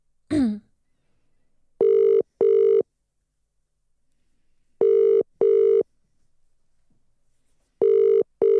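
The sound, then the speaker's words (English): A phone line rings out with a steady double-pulse ringback tone, pairs of short buzzy beeps repeating every few seconds, on a call placed to test picking up a caller on the Roadcaster. A brief throat sound comes at the start; otherwise no one talks. “I can hear ringing.”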